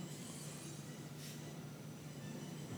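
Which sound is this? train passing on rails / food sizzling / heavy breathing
train passing on rails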